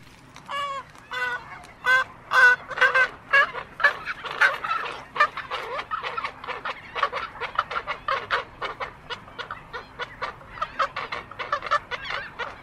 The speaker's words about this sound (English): That is a colony of roseate spoonbills. I'm coming from the Audubon.org website.